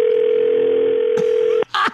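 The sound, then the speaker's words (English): A steady, unbroken telephone dial tone hums loudly for over a second and a half after the line goes dead, then cuts off abruptly with a click and a short burst of noise. “Your call is no longer on the line.”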